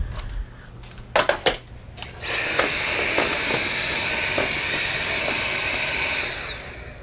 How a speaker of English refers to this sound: We've got some cool things with Dyson and the Dyson app. Well, the Dyson vacuum cleaner. I can't promote Dyson vacuum cleaners over podcasts, but I can fire this thing up.